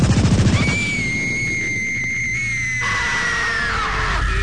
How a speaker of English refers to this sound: What do we hear now? We hear sirens and guns going off. Huh? I mean, I wake up in the morning. Here's what I hear in my neighborhood.